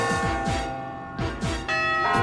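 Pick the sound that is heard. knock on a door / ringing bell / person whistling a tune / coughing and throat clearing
ringing bell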